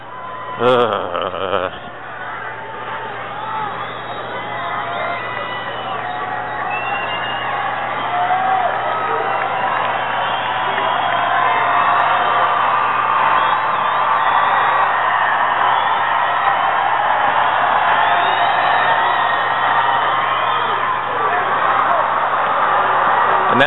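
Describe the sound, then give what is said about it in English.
A baseball crowd at a Padres game roars in reaction as the bases are loaded, a dense wash of cheering, whoops and shouts that swells after a few seconds and stays loud and steady, with a low hum underneath. “Probably hear from the reaction from the crowd.”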